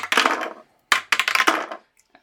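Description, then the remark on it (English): Several bursts of dice rattling and clattering across a hard tabletop, a long roll followed by two quicker tumbles, ending with a few faint settling clicks. No talking. “So let's roll some dice and let's talk about this sucker.”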